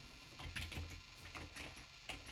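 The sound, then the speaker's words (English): Soft, irregular clicks of someone typing on a computer keyboard, quiet, with uneven gaps between keystrokes and no voices. “I'm typing, as you can hear, because God reminded me of a chorus that I can't get out of my head.”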